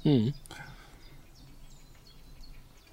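Faint birdsong outdoors: short high chirps and tweets repeat throughout, following a brief loud vocal sound at the very start.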